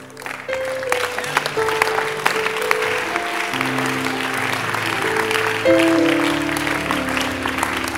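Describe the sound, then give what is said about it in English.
An audience claps steadily for several seconds, a dense even patter of many hands, with low sustained musical tones shifting underneath. “Don't clap.”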